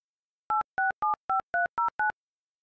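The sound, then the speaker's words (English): Seven short, evenly spaced telephone beeps on an unanswered call, each a two-pitched electronic tone like touch-tone dialing, sounding clearly on their own with silence before and after and no voices. “Why don't you ever answer your phone, I swear.”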